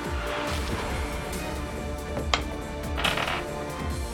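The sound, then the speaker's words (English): Dice are dropped for an attack roll in a tabletop role-playing game, clattering and tumbling across a hard tabletop in a busy run of quick clicks and rattles with one sharper knock partway through, no voices. “I just rolled a 1.”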